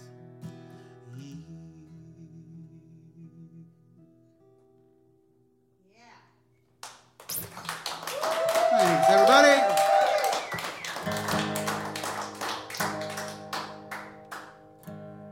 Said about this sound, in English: They're applauding, I'm singing.